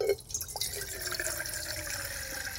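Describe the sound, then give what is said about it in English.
Water runs steadily into a cooking pot to cook rice and quinoa, a continuous splashing pour with a rising, resonant tone as it fills, no voices present. “So I'm going to add a little bit of water to this pot here and get my rice and quinoa going.”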